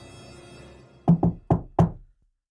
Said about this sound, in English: So the wolf knocked on the door